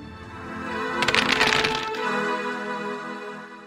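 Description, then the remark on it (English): A short burst of dice clattering and tumbling across a table, a quick run of rattling clicks lasting about a second, fairly loud over a quiet steady background. “That was a hell of a roll.”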